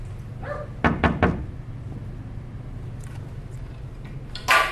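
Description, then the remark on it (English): A dog named Bruno barks in an office in a quick burst of three sharp barks, then goes quiet over a low steady hum before another short, loud noise near the end. No one speaks. “Let's try to walk around the office here and see what's going on with Bruno over there barking. What is he barking at?”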